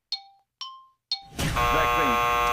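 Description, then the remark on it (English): Three quick bell-like dings ring out, each fading fast, then a loud, harsh game show buzzer kicks in and holds steady to the end. “Yes, vaccine is it, but you started well after the buzzer started to sound, so.”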